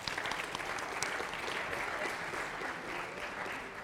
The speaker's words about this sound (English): So that was a successful date, so let's give them a round of applause, all right?